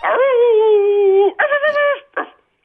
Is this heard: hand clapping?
no